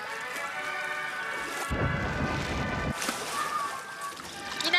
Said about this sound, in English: We did a synchronized swimming spot in which he had to say Aflac underwater. So we had him, you know, we gave him a bottle of Poland Spring water in the booth, and he basically gargled the word Aflac.